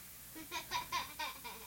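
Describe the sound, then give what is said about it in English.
A young child screams close to the microphone in five short, shrill bursts, rising and falling in a quick, almost giggling rhythm. “I can't remember what it was, and I won't be able to remember with a child screaming in my ear.”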